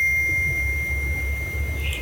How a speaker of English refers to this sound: Yep, there was a ding sound, beeping or whatever it was.